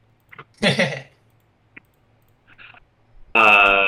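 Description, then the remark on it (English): A single crisp mouse click sounds amid a few soft scuffs and rustles, then a loud, steady buzzing tone abruptly starts at the end. “I'm absolutely clicking on this.”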